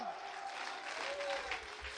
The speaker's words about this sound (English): Somebody needs to get on a praise break right now. Somebody needs to clap their hands unto the Lord and lift up their voice unto God.